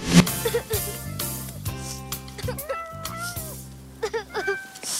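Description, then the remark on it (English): Several short, rising cat meows sound over a busy film soundtrack with steady music underneath, clear, scattered across the scene alongside brief voice-like sounds; a film scene in which a young Elizabeth Moss plays a little girl whose cat keeps getting stuck in a tree, and an alien comes to rescue the cat. “And in this scene, a young Elizabeth Moss is playing a little girl who keeps losing her cat in a tree.”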